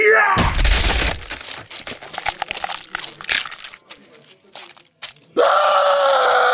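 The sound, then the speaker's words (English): A heavy thudding blow lands as a man punches another man in the face, followed by a few seconds of sharp cracking and crunching snaps as the puncher's arm shatters, then a loud, sustained scream of pain bursts out. “He punched McSalty in the face and his arm just shattered.”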